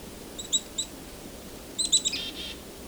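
Chickadees calling, with one bird within a couple of feet of the recordist: short, high, thin chirps in two quick bursts, a pair of notes first and then a faster cluster of four or five, over a soft background hiss.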